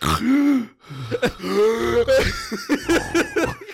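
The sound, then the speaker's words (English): A voice imitates a person with sleep apnea who stops breathing and then suddenly gasps back into snoring: a choking gasp-snore, strained and throaty, rising and sputtering in a few rough bursts over a few seconds, fairly loud. “He's like, like a drowning man.”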